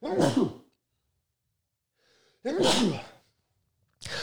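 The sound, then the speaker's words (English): A loud, close sneeze, then a short quiet inhale and a second sneeze, with a third starting right at the end. No one speaks. “Bless you.”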